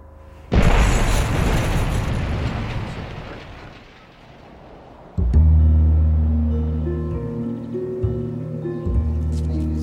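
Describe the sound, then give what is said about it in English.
Two artillery shells explode very close by at 2:30 in the morning, rattling glass, in a rebel-held town shelled by the regime of President Bashar al-Assad: a sharp, loud blast with a long rumbling decay, then a second heavy boom a few seconds later, followed by a sustained low roar. No one speaks. “We just heard two shells landing very close to here. They rattled the glass.”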